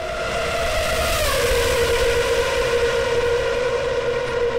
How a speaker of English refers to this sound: Hey, for those of you who've never experienced what it's like to be in a Formula One car, take a look.